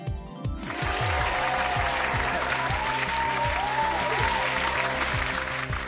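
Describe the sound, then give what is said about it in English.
A sustained burst of applause from a crowd on a game show, welcoming the card Porcuparrot, steady and loud throughout, with dense clapping filling the scene and faint musical tones underneath. “Please give a round of applause to Porcuparrot.”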